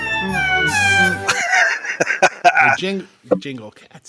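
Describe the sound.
Cat meows strung together into a sung Christmas melody, pitched up and down like a festive tune, loud, then voices break in and talk over the end.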